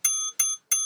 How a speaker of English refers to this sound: Turn the notification bell on. Bing.